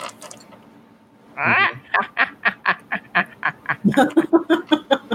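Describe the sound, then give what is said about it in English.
A bird lets out a rapid, rhythmic run of loud, nasal duck-like quacks, about a dozen in quick succession, preceded by a brief harsh squawk. “The bird gets it.”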